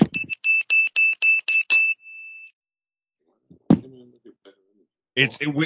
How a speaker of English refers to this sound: Give me my bell.